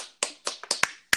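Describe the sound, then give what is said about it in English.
Hands clapping, about six sharp claps in quick, slightly uneven succession, each a bright crack with a short tail, and no voices, applauding LaVisca Chenault Jr., Colorado wide receiver, as winner of the 2020 best name in the NFL draft award. “Clap it up. I'd have to agree. Clap it up, clap it in.”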